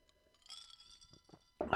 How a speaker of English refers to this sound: All right, we're chewing ice, dude.